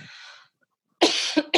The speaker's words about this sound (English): I'm going to cough. I have to cough for a second. No, you're fine.